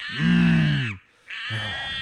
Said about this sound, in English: Oh, you're a bad little monkey, aren't you?